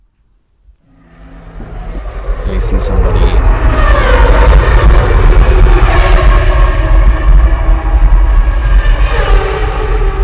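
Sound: cars driving by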